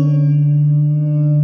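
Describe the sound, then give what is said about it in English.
A voice says "boo" through the electronic echo effect of a kid's toy phone, holding one low pitch with a buzzy, synthetic ring for about a second and a half. “One of them's amplified. Can you tell the difference? Yeah. Echo chamber. You're got some electronics going on there.”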